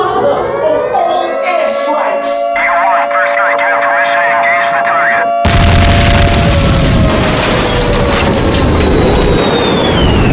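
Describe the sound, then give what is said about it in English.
An airstrike explosion effect: after several seconds of steady tonal humming, a sudden loud blast bursts in and roars on as a dense, crackling rumble, with a faint whine sliding downward through it. “It's time to engage the airstrike.”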